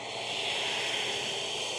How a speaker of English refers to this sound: You hear that? Yeah. Sounds like I'm in a... like a, it's like a wind? On a mountain pass or something.